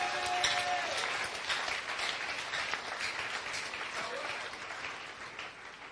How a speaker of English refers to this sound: It is the church of Jesus Christ of the Latter-day Saints. Clap for Jesus.